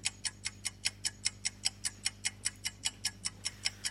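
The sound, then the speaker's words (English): A quiz countdown clock ticks rapidly and steadily, about five crisp clicks per second, with no voices and only a faint low hum underneath. “You've got 20 seconds left on the clock, just to tell you.”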